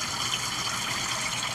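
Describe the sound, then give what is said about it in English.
Water pours steadily from a pipe in an alley as someone collects water, in a continuous, hissing gush, even in loudness throughout, with no voices. “It's coming out of a pipe in the alley. Getting the water.”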